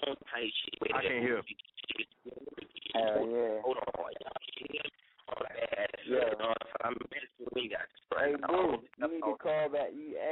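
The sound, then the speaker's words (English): A caller rapping a freestyle comes through a narrow, tinny phone line, continuous and fairly loud, the speech muddied and hard to make out as if distorted by line interference. “You need to hang up and call back because your phone got too much interference in it.”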